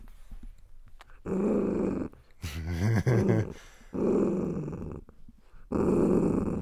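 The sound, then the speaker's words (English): A dog growls in several long, low, rumbling bursts separated by short pauses, with a brief higher whine-like snarl in the middle. Fairly loud, with no talking. “The dog's growling.”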